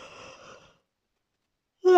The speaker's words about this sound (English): Obviously, hang on, yawn.